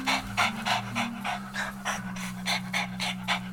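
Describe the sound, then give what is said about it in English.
A female dog pants rapidly and steadily, quick rhythmic breaths repeating about three times a second over a low steady hum. “This dog is on a full tear.”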